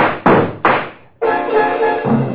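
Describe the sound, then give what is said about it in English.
Two heavy, thudding footsteps land about half a second apart, loud and close, followed by a sustained droning tonal sound that carries on to the end. “It's almost 8, and now you hear them. Footsteps. Closer. Closer.”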